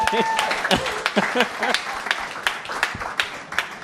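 An audience claps steadily for a few seconds, a dense, moderately loud patter of many hands, with brief voices and a cheer mixed in over the applause.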